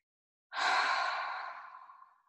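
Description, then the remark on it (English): A single deep, breathy exhale like a long sigh after a big deep breath in, fairly loud at first, then slowly fading out over about two seconds, with no talking. “And then a big deep breath in and exhale, release.”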